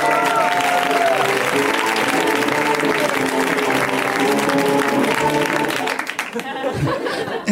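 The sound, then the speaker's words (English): Loud, sustained audience applause with cheering and some laughter for several seconds, welcoming a guest at a live show, then tapering off near the end as a voice begins to speak. “So please, a wild round of applause”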